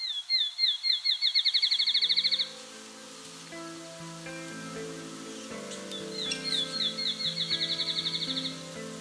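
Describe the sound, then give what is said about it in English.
A field sparrow sings twice, each song a series of clear, high whistled notes that speed up into a rapid trill, over soft instrumental music in the background. “The field sparrow has a very lively song. It starts off with slow, repeated tones, then accelerates to a point where it almost blurs into a solid note.”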